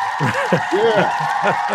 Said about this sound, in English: And this is where we edited in, or I edited in. The applause. Myself an applause.